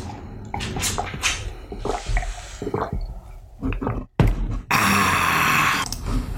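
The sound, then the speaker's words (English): Someone drinking blue water: wet sips, gulps and small liquid squishes, a brief pause, then a steady, loud rushing, splashy noise. “I'm taking a drink of water.”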